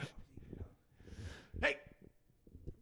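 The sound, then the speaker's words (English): A dog in the room lets out a single short, sharp noise partway through, clear, with soft breathy sounds and faint muffled voices around it. “It's okay. Dog's my dog's in my room.”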